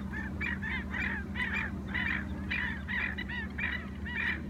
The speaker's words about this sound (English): You can probably hear the blackneck stilt, the endemic and endangered IO, making a lot of racket next to us. I don't think they're happy about all the lights. I'll be quiet for a sec so you can hear them.